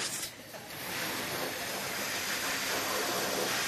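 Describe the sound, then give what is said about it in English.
Someone blows up a balloon by mouth: a long, steady rush of breathy air that briefly dips early on, then holds a constant hissing whoosh. No talking. “I haven't blown up a balloon in it. Wow, that takes a lot of air.”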